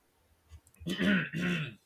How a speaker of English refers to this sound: where's my cough?